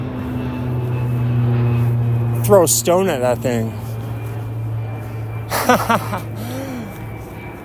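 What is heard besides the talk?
low-flying plane passing overhead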